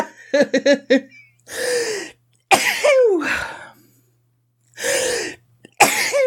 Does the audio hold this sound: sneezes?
yes